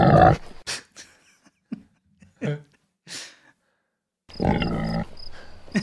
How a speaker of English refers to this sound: I love that the sound of the pig is right in the mic. Yeah. They mic'd up the pig first. I may have added that. Anyway, like that pig is mic'd up.